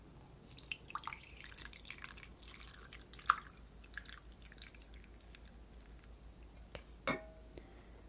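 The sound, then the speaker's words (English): Water is poured into a cup to steep peppermint, a soft, uneven trickle of splashes and drips with a couple of brief sharper clinks, fairly quiet, with no one speaking. “Going to pour the water in.”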